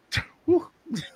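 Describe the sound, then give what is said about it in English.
A sharp, breathy sneeze bursts out, followed by a couple of short voiced sounds, maybe a sniff or a murmur, all within about a second. “Bless you.”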